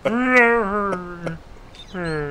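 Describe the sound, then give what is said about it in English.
A voice imitates a sad wolf purr: a long, drawn-out whimpering tone that sags in pitch, a short pause, then a second mournful note, fairly loud. “The wolf purr. That was sad. Sad wolf.”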